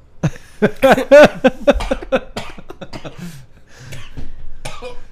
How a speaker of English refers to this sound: He's just coughing.